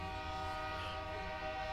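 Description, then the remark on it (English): The horn of a giant train blares in one steady, sustained tone, loud, with a rich stack of harmonics held throughout and low rumble beneath, no voices present. “Also, there was a giant train.”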